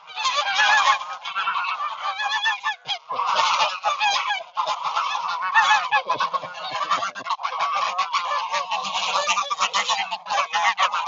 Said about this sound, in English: These geese are my friends, right? You know, I hope that made all of you smile. They make me smile.